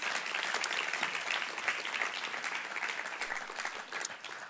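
An audience breaks into steady applause, dense overlapping claps forming a bright, sustained wash of sound that holds at an even loudness for several seconds without any talking.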